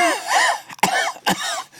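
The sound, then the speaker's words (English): A person performs a quick run of several coughs, sharp bursts with strained, voiced rasps between them, fairly loud, like someone imitating a hacking cough. “Now, like on the fourth cough, I'm starting to think infection.”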